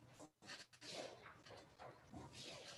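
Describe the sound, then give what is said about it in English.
A dog waiting outside in freezing weather to be let in whimpers and lets out short, soft barks, the whiny yelps running almost continuously for a few seconds with brief pauses between them. “I got to let a dog in.”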